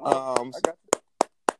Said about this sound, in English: Well, you didn't have to clap for yourself. Well, but you should though.